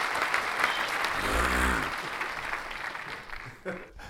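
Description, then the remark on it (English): Dense, steady applause from a group fills the whole stretch, a continuous crackle of many hands clapping at once, with a brief voice murmuring underneath partway through before the clapping thins slightly at the end. “You know, we're gonna get let's get a little cracking applause going for”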